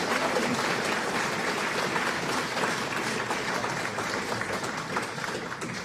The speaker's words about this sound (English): Amazing. Please, ladies and gentlemen, can we give another applause for Dorothy and, of course, Susanna?